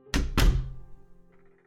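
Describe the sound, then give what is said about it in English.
A door shuts with a solid thunk: two quick heavy impacts in close succession, followed by a short low rumble that fades away. “They smile an eerie smile and leave you alone, closing the door behind you.”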